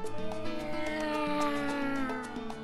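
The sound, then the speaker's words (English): A cat meows in a drawn-out, wavering cry lasting a couple of seconds, fairly loud, with no talking over it. “This week's episode of Not a Couple was recorded in front of a live studio audience of one cat.”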